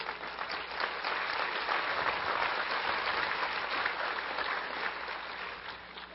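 An audience claps steadily for about six seconds, a dense, even wash of many hands with no pauses, holding at a constant loudness before easing slightly at the end.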